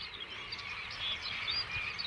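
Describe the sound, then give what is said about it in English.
A flock of thousands of birds, spooked by something, swirls around in the sky. It fills the air with a dense, steady wash of high chattering chirps, with brief sharper calls darting above the continuous din and no voices. “Oh, listen to that. Thousands of birds just swirling around. Something spooked them.”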